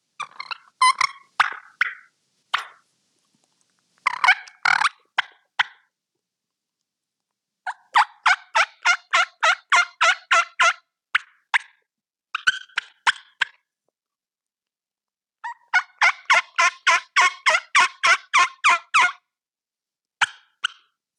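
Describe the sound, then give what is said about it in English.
A turkey hen imitation on a double-reed call: scattered sharp putts and soft purrs, then two long runs of rhythmic, raspy yelps, loud with silent gaps between. “So this will be a little example of putts, purrs, and some yelps with a double reed.”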